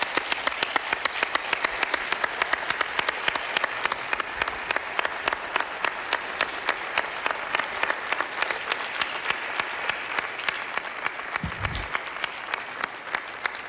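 A large crowd applauds military veterans standing up in the building, a steady fourteen-second, dense, even patter of many hands clapping at once with a brief low thump near the end.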